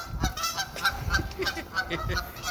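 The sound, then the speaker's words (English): A flock of geese honking loudly and repeatedly at a pier, overlapping calls in an irregular, clamorous chorus that stays continuous throughout. “The horde, the goose horde.”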